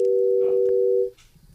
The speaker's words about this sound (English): you get a dial tone.